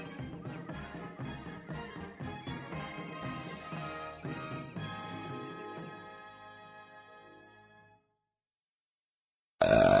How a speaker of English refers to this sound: Sorry, I had to burp there.